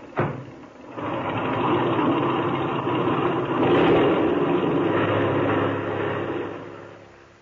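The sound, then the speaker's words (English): An airplane engine roars up after a brief click as the motor is opened with the brakes set before takeoff, settling into a loud, steady drone that swells slightly midway and holds, with no voices. “Open that motor, and when I wave to you from the outside, take her off.”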